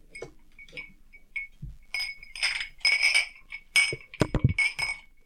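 Several glasses clink together in a toast, a quick cluster of bright, ringing taps, fairly loud, with a few softer clinks before and a brief low thump near the end.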